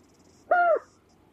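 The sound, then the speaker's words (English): A single white-faced storm petrel call of an adult bird, broadcast every night over a sound system in the new white-faced storm petrel colony on the southwest cliffs of Mana Island: one short, tonal, mid-pitched note with a rich harmonic quality, dipping slightly at the end, over a faint background hiss. “Every night, the sound system in the new white-faced storm petrel colony on the southwest cliffs of Mana Island broadcasts the sounds of adult birds.”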